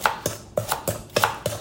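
A knife chops a red onion on a cutting board in quick, steady strokes, about six sharp taps in under two seconds, crisp with no talking.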